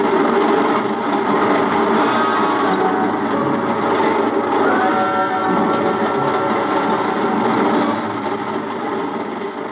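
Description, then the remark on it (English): A train thunders under a bridge in a dense, steady roar of rattling, clattering machinery that holds loud and unbroken for about eight seconds before easing slightly at the end. “I reach up and jerk it loose just as the train thunders under the bridge.”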